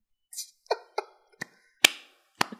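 Five or six sharp, slow hand claps with uneven gaps between them, each a crisp smack that fades quickly. The claps are moderately loud, with no voices.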